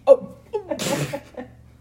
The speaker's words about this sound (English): Oh. Why did I almost burp? Oh Lord.